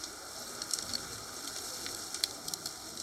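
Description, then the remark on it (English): Rain falls outside as a steady, soft hiss, with scattered light ticks and patters of drops breaking through. It stays fairly quiet and even, with no voices. “It's raining outside.”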